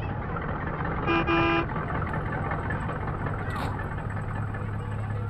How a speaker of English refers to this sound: hey, lay off the horn, would you? You don't think I saw your truck? You can see that pumpkin orange atrocity at midnight. Everybody sees you coming. Tapped the horn, darling. Tapped it ever so gently.